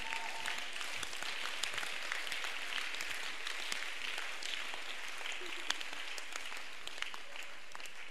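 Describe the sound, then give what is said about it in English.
An audience claps steadily, a dense and continuous wash of many hands with no pauses, holding at an even, fairly loud level throughout. “The way you are clapping shows you don't understand the thing self.”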